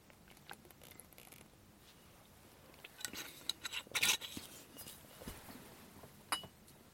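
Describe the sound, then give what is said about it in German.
Someone takes a drink: a few soft glass clinks and light handling clicks, with a brighter clatter partway through and one last clink near the end. Nobody speaks. “So, ich hab mal, ich brauche was zu trinken. Ach, kleine Trinkpause für uns alle hier.”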